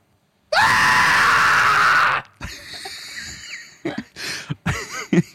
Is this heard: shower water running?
no